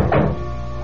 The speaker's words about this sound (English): Suddenly, I heard this rapping at the door.